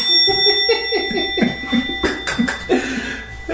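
A steady, sustained ringing tone like a bell hangs through the whole stretch, mixed with a lower murmuring voice-like sound underneath.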